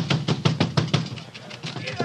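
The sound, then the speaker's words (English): Soldiers pound heavily on the house door at the Garrett farm at 2 o'clock in the morning while searching for John Wilkes Booth: a rapid, steady run of loud, dull thuds that weakens and grows more ragged toward the end. “Open up, or we'll break in the door.”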